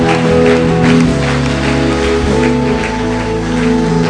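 An audience claps and cheers steadily for about four seconds, the dense applause blending with sustained music playing underneath at a constant, loud level.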